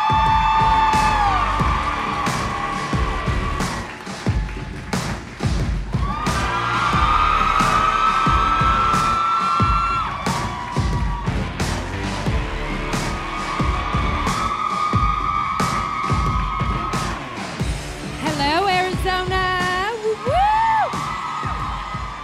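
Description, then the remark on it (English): A large sold-out crowd in Scottsdale, Arizona cheers and whoops without pause as the Bella Twins, Nikki and Bree, are welcomed home; loud and dense, with high shrill whistles and yells rising above a steady roar of applause. “We got a sold out crowd.”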